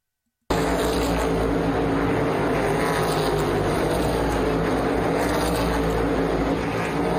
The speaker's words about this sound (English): Cars racing by, it's awesome.